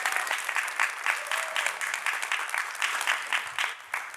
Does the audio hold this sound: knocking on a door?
no